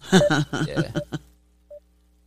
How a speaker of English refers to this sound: Facebook has, like, the weirdest little dial tone, dude. Yeah, it sounds like a radar pulse.